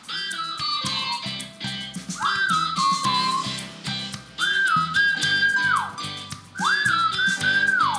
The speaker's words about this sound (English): I wonder if my whistling sounds horrible online. It's not too bad. I don't think it's too bad.